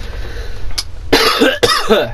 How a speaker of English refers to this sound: Cough.